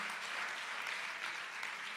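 An audience gives a loud applause for the Lord, a dense, continuous wash of many hands clapping at an even level with no talking.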